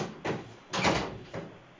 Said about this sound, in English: He poked his head out and then he slammed the door in my face.